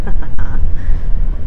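Steady, rumbling traffic noise with a buzzing, whining engine tone that rises and shifts, as mopeds pass through busy city streets, loud throughout the short stretch.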